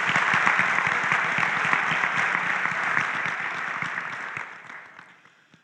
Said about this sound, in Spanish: Let's give a clap Amen. Offering to Un the Lord. Un aplauso para el Señor.